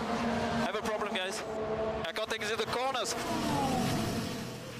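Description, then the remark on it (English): Several high-revving Formula One car engines whine past in quick succession during warm-up, an Alpine being overtaken and a Haas going past, their pitch sweeping up and down, with a continuous roar of motor noise underneath and a voice talking over it. “Look at this, a gang of three cars. We have got an Alpine that is being overtaken.”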